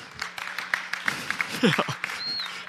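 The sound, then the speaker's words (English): A crowd claps in a steady, dense patter for a speaker arriving late, with scattered voices calling out over it and a brief high whistle near the end. “Getting applause for being late.”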